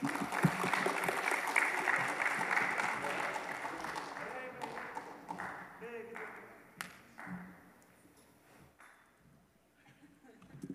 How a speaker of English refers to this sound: I can tell just by that clap that the energy is a little low in here right now.